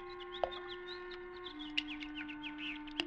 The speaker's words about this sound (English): What's that? Oh, birds playing in the fish pond. Look at them. Happy birds.